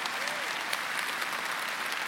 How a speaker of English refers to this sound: And with the palms of our hands, we can give the Lord an offering of applause for what He's done. Yes!